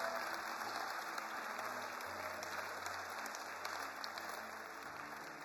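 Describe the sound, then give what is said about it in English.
A large church audience claps and cheers in praise of God, sustained, dense applause that fills the whole span, with a steady low hum beneath and no clear individual voices. “Give him one more hand clap of praise and glory.”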